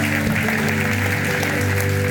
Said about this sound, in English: Now give the Lord a clap and a shout. Hallelujah. Hallelujah. Hallelujah.